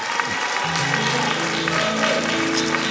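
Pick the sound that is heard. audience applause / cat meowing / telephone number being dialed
audience applause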